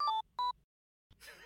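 A Phoenix Watch smartwatch gives two short, bright electronic beeps in quick succession, with a slight pitch step between them. A pause follows, then a burst of hissy, rustling noise.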